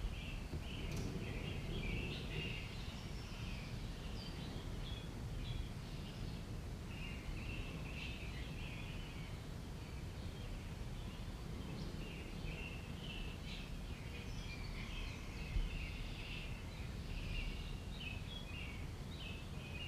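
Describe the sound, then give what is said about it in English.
Outdoor ambience with repeated high, quick bird chirps scattered throughout, over a steady low rumble of wind or background noise. No one speaks. “If you find yourself wondering, what kind of bird makes that sound, or where is that sound coming from?”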